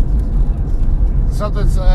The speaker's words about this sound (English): That is a car. Where? It's not supposed to be up there.